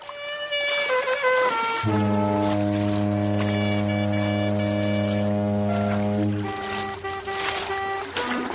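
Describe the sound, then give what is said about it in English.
A voice imitates a clarinet with wavering melodic notes, then holds one long, loud, low buzzy tone, all over a gurgling, bubbly wash, as if the clarinet is played while drowning on a sinking cruise ship. “Play your clarinet as we go down drowning to calm the people that paid to come on this cruise.”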